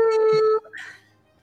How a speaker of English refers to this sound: Oh yeah, the air horn.